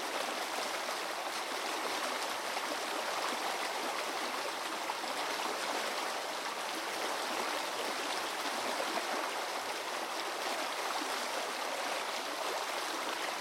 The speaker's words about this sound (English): To explore this underwater sound world, I suspended hydrophones from two fishing rods and immersed them in the river.